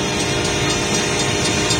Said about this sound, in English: This driver can't think he can beat a train.